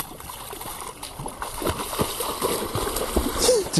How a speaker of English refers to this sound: Right, the dog is in the water.